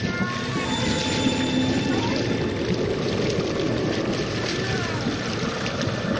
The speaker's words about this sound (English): But then, it started to bubble and ripple in three places, as if something, or some things, were surging out through the depths. And they were. The water exploded as they arose.